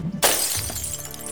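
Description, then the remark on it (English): An empty glass bottle, tossed behind someone, smashes loudly onto a heap of broken glass from about 100 bottles, a sharp crash followed by a bright, scattering tinkle of shards that rings out and slowly settles. “When he realized the bottle was empty, he tossed it behind him.”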